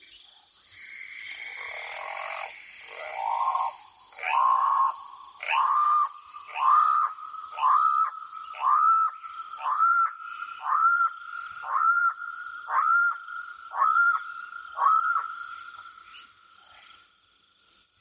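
A loud, harsh bird call of a channel-billed cuckoo, repeated as a rapid series of about a dozen raucous, rising squawks in steady rhythm, with faint higher-pitched background chirping.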